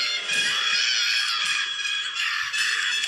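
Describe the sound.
A man lets out a loud, shrill, horror-film-style scream, mimicking a terrified shriek. It holds steady for about three seconds with slight wavering pitch and no talking around it.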